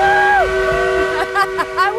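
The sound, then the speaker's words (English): An actual working coal-burning steam engine at a theme park devoted to Dolly Parton, one of the last in the world that burns actual coal, sounds steady, whistle-like harmonic tones, with pitches sliding up and down and a few short rising chirps near the end, fairly loud throughout. “An actual working steam engine. It's one of the last in the world that burns actual coal.”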